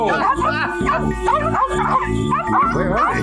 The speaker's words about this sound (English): Like they go to this junkyard. And the junkyard is protected by these junkyard chiweenies. Guard dogs! Run! Guard dogs, man.